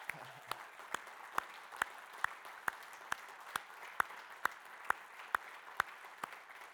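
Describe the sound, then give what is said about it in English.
A church audience applauds and cheers for members of the church's care team, a steady, dense wash of clapping with sharp claps ringing out on a regular beat above it. No voices stand out. “Hey, as a church, can we clap and cheer every one of these?”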